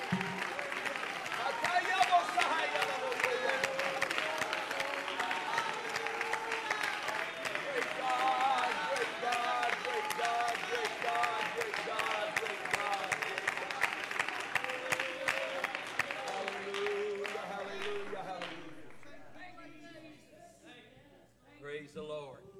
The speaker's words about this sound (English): Clap your hands, oh you people. Shout unto God with a voice of triumph.